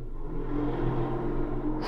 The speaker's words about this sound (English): Hear that? Is that a monster truck?